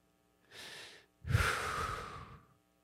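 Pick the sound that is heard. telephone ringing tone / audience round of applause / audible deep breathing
audible deep breathing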